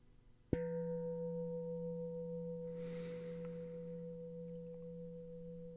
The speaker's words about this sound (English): And allow the sound of the bell to come in and drift out. Allow your thoughts to drift away with that bell.